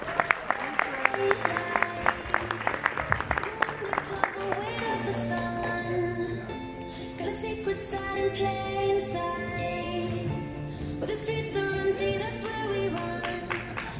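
An audience applauds with a dense, steady patter of clapping, strongest in the first few seconds, mixed with loud sustained music that carries on after the clapping thins out.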